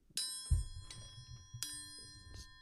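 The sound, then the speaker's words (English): A bright metallic chime rings out, struck twice about a second and a half apart, its clear tones lingering and overlapping over a soft low rumble, with no voices. “Sorry, it was a bad joke, so I put the chime on it.”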